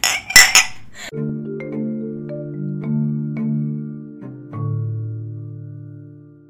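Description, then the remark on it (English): Glasses clink together sharply a couple of times in a quick toast, then a soft, sustained tonal drone of music fades in and carries on alone. “Should we clink again?”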